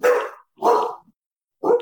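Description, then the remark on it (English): A dog barks three times, loud, with short gaps between the first two barks and a longer pause before the third. No one speaks. “That dog doesn't like beating butlers, apparently.”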